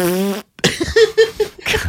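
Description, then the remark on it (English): A loud fart sound made with the mouth as an ad lib: a buzzy, tonal raspberry, a brief pause, then a longer sputtering, rippling stretch of wet blats lasting nearly two seconds. “Is there a fart sound printed in this fucking article's headline? No, that was an ad lib.”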